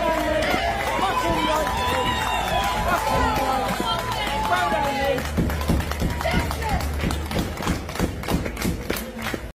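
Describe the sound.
A crowd at a billiards event cheers and shouts in a loud, dense roar of voices for a player who forfeited, then breaks into steady rhythmic clapping that continues to the end alongside the cheering.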